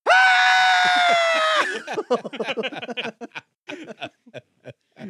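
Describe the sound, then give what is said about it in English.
A man imitates a power metal scream as a joke while tracking vocals, holding one loud, strained high note for about a second and a half, then breaks off into quick talking. “There was a part in there when he was tracking vocals, and he just like, as a joke, just threw like a lame attempt at a power metal scream in there.”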